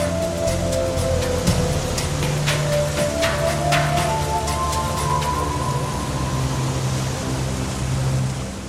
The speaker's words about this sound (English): After a few days, the ship got caught in a bad storm. The ship will not survive the storm.